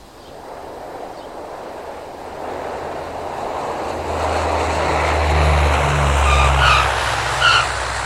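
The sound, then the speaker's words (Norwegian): A Dash 7 propeller airplane rumbles steadily on the ground after landing at Namsos airport, Norway, on Friday evening, 6 May 1988, arriving as route 710 from Trondheim Værnes; its engine drone swells louder with tonal whines rising toward the end; no one speaks. “Et videre fly av typen Dash 7 har nettopp landet.”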